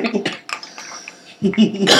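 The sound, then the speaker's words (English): A single sneeze: a short voiced intake builds up, then breaks into a sharp, loud, hissing burst at the very end, with faint clatter and murmuring before it. “God bless you.”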